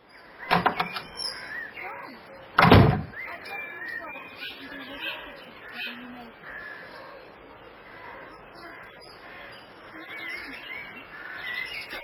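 A cottage door in Norbury opens with a couple of sharp clunks as a woman walks out, followed by quieter shuffling while birds chirp steadily in the background outdoors.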